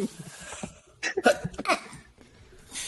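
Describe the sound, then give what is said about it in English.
A sudden sneeze bursts out mid-clip in a few sharp, breathy spurts, surrounded by quiet background tone and faint shuffling. “Bless you.”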